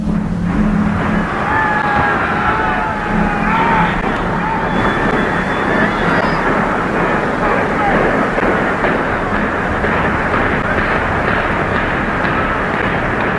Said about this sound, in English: it sounded like a train rumbling by as it kind of the explosives detonated section by section. Right. And it just kind of slowly crumbles to the ground.